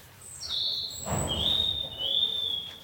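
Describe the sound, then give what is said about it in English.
High, thin bird whistles and chirps carry on almost continuously, with a short rustling burst of noise in the middle. No one speaks. The birds are inside a greenhouse at Kew Gardens, in its planty, jungle-like America section. “These birds are having the fucking time of their life.”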